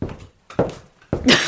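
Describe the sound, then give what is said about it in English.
Imitated footsteps and a door closing, performed to mimic someone walking out the door: three soft, uneven thumps, each louder than the last, ending in a bright, hissy burst that sustains to the end. “There's a pitter-patter of his footsteps.”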